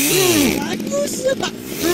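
A chainsaw runs steadily with a loud, buzzing harmonic drone, its pitch swooping up and down as the engine revs and eases throughout.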